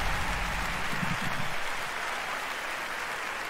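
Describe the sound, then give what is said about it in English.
Dense audience applause for the evening's presenters, a steady crackling wash of many hands clapping at an even level, with a faint low murmur of voices in the first second and a half. “Another round of applause, please, for Marty Hugo and all of our presenters tonight.”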